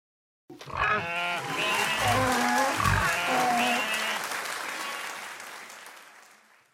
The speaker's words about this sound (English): Would anyone like to join us on stage? Excellent! A round of applause, please, for our volunteer today.